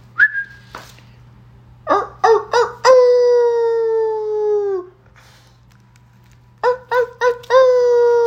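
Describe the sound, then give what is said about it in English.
Loud, a man imitates a dog howling to get his dog Diesel to howl: a few short yips lead into a long, drawn-out wavering howl, then the sequence starts again. No other talking. “I'm sure that was annoying to hear me howl because I'm not a dog.”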